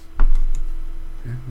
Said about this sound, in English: It's gonna be Sony keyboard sounds.